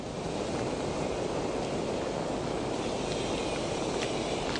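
A steady, broad hiss of geothermal vents in New Zealand, where heat from the Earth's core presses to the surface, fills the whole recording, with a dense churning, bubbling texture underneath, continuous, with no voices.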